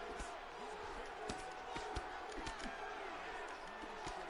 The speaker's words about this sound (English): Wow, the crowd was chanting DC for a moment. I don't know if you guys could hear that, but that's never happened.